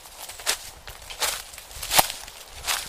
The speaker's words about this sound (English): All right, so I have the sound of somebody walking.